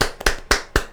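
Hands clapping in a quick, steady rhythm, four sharp, bright smacks about a quarter second apart, fairly loud with no talking.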